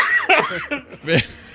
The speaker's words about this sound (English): I muted when I laughed, and then when I started coughing, I unmuted for some stupid reason.